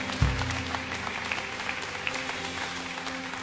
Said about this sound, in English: Go ahead and put your hands together. Clap on. Yeah. God, we praise you.